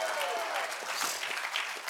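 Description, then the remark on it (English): An audience claps steadily, many hands producing a dense, crackling wash of applause that holds an even loudness throughout, with no voices standing out. “Come on, if you're going to clap, give him a good hand clap today.”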